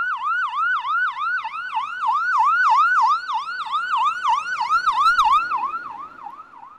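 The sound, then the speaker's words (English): An ambulance siren yelps in a fast, steady warble, loud, repeating its rising-falling sweep for several seconds with faint traffic rumble beneath and no voices, as the ambulance takes an injured person to a nearby hospital. “The ski patrol transported him the rest of the way down the mountain, and an ambulance took him to a nearby hospital.”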